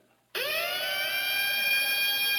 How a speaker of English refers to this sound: The British air raid.